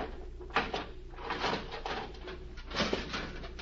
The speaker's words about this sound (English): Now, if I can get the jimmy behind the steel door.